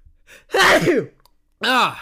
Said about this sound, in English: Thank you, though. And if you said bless you, thank you for that as well.